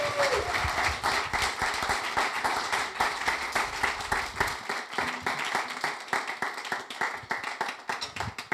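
An audience applauds steadily, a dense wash of many hands clapping with sharp individual claps standing out, staying loud throughout and thinning slightly toward the end.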